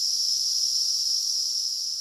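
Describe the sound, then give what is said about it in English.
A dense, steady chorus of cicadas, emerged en masse and flying around trying to find mates, buzzing together in one continuous high-pitched drone, fairly loud and unbroken, with no voices or other sounds. “Right, so cicadas spend most of their young lives underground feeding on roots, and they emerge en masse, flying around, trying to find mates, making a lot of noise.”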